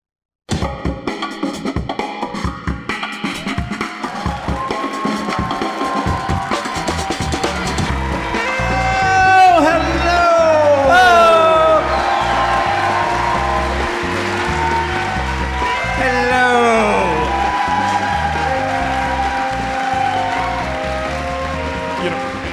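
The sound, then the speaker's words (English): Steady crowd applause with cheering and shouting voices, joined partway through by rising and falling whistles, holding at a loud, even level throughout. “Thank you for that nice round of applause.”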